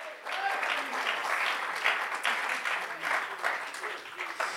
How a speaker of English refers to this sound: Would you clap your hands to the Lord, everybody? Come on, somebody. Would you give God praise right now?